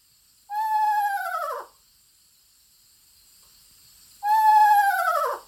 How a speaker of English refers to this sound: To accentuate the story, I played the eerie whinny of an eastern screech owl to a full room of UFO enthusiasts.